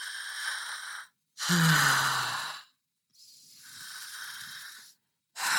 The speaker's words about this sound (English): And I do everything in and out of the mouth. So it's like breathing to the back of the throat.